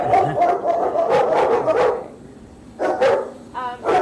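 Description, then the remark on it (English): Several dogs in a kennel bark as visitors come into the lobby, a dense run of overlapping, echoing barks that stops briefly, then resumes with a few more sharp barks and a high yelp. “The barking starts.”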